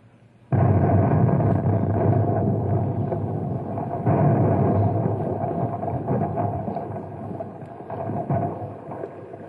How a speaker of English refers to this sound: How'd you like to pull the wire and detonate the Compound C?